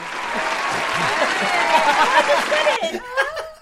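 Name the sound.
clapping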